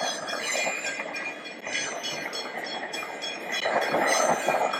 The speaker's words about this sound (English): As the emergency signal of a train passing by sets the backing track to my answer,